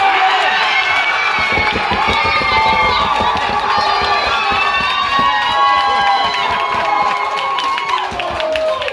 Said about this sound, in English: So it was a fun experience to be at a pub where people were cheering, where you could hear things like this during the penalty kicks.